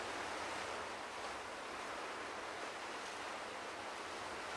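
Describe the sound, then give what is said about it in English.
Ocean waves wash against rocks in a continuous, even roar of surf, with no distinct individual crashes and no voices. “And to sit on top of a shelf, in the imagination a cliff, steep, the ocean down below, dashing amongst the rocks, his feet dangling.”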